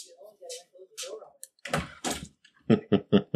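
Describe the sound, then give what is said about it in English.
A studio door swings shut with a solid thud and rattle as someone closes it, followed by a short run of rhythmic knocking sounds, with voices faintly audible before it. “Yes, our friend, the voice of the matriarchy, came over and closed the door.”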